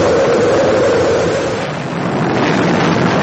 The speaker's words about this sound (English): 5, 4, we've gone for main engine start. We have main engine start.